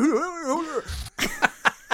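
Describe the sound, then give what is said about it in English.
A voice does an impression of the cartoon dog Scooby-Doo, starting with a wobbly, sliding whine and ending in a few short, punchy yelps, fairly loud. “you win a Perrier for your Scooby-Doo impression of the week.”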